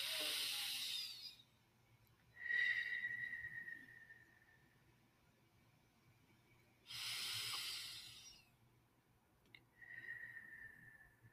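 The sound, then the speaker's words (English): Two slow breathing cycles with no talking: a hissy sniff in through the nose, then a longer, softly whistling exhale through pursed lips, separated by quiet pauses. “I hope you can hear me breathing in and breathing out”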